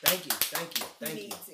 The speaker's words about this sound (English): I lost 15 pounds in 2021. Everybody give him a round of applause for the 15 pounds.